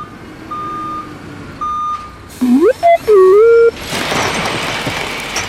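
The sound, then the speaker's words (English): Two long, steady backup beeps from a reversing truck, followed by a warbling, sliding tone and then a broad rushing engine hiss, all fairly loud. “you can back up the truck of skincare now, please.”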